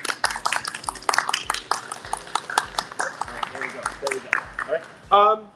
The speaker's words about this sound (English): So again, I want to give another clap.